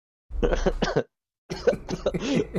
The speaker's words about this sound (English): Sorry, I'm coughing now because it's sweaty.